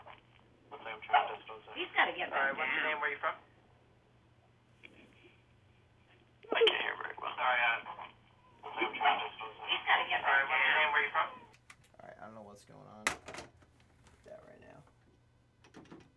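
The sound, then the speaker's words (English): A host's own voice comes back through a thin, narrow telephone line during a live on-air phone call, in several bursts, sounding like speech echoing back on itself, with a steady low hum underneath and a few clicks toward the end. “I don't know why that was my voice just kept repeating on that.”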